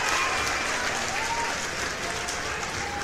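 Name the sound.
crowd cheering and applauding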